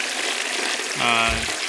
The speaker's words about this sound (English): This is a reluctant flush because it just after a long discussion.